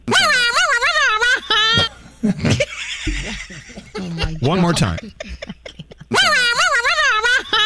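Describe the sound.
Someone imitates an air horn with their voice, giving loud, wavering, blaring tones in two bursts, with a short spoken phrase and some laughter between them.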